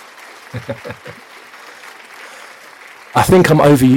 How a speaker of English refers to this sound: I think I'm overusing the clap.